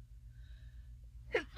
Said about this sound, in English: Oh my god, I'm gonna sneeze.